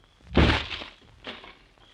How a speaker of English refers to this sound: Step back, will you? Let me kick open the door.